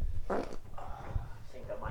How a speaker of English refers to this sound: Was that on? I farted on my own mic, and now I have to huff it.